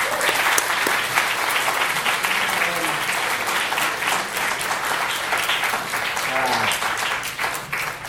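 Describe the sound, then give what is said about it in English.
Steady, dense applause from a large audience welcoming guest speaker Bob Mankoff, a loud continuous wash of many hands clapping for about eight seconds, with faint voices and a cheer or two mixed underneath. “Please join me in giving a warm welcome to our very special guest, Mr.”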